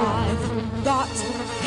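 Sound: mosquito buzzing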